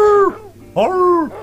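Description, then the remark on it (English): A person imitates a film dog's strange, elephant-like bark, giving two drawn-out, tonal vocal calls with a brief pause between them, fairly loud. “over and over again, the same three barks repeated over and over again for every dog.”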